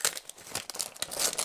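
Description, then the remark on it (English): Crinkly rustling and ripping of gift wrapping paper as a birthday present is torn open, a quick series of papery tears and crumples with no voices. “gonna open presents live on the podcast. So rip it open, have at it.”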